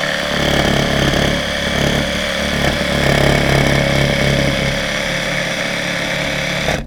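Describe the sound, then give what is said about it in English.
A small power saw cuts through a gourd along a pencil line with gentle pressure, a loud, continuous motorized buzz and whine that wavers slightly in pitch and intensity, with no voices throughout. “Now you don't want to be pushing your saw when you're cutting.”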